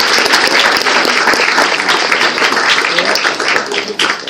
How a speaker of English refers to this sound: Let's give her a big round of applause, everyone.